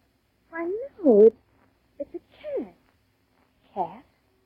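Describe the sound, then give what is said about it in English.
A cat meows several times in short, drawn-out calls: two close together, a brief chirp and another meow, then a final one after a pause. Clear, with no talking. “It is a cat.”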